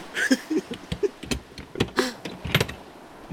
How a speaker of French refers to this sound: J'ouvre le coffre!